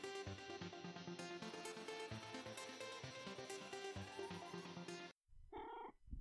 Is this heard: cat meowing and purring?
yes